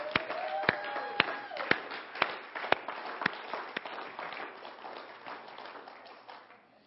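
A church audience cheers under loud, steady rhythmic clapping, about two claps per second, with a few high voices rising at the start before the noise gradually fades, as the children leave for their Kids Life class.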